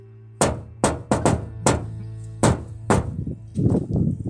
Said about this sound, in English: Then God knocks.